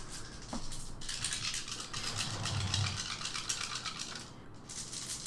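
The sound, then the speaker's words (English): Dice are rolled during a game, against a difficulty of 7, rattling and clattering steadily for about four seconds, a dense stream of bright, hard clicks at moderate loudness with no one speaking. “Now we'll roll for your last week of training. Dice gods.”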